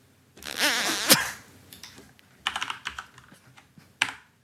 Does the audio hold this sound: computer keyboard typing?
yes